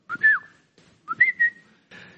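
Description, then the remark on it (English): A person whistles a short family signal call, used in shops to find each other: a quick rising note sliding into a held tone, repeated twice with a brief pause, then a third softer start; clear, no talking. “So my parents, they have this whistle that they do in the shops.”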